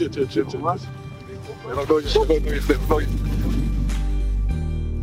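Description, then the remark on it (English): Several excited friends shout and scream over one another as they get out of a car in front of a house, while a low engine rumble starts partway through and holds steady beneath them. “friends screaming as they got out of the car in front of his dad's house.”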